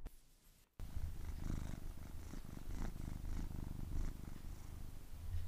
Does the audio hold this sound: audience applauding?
no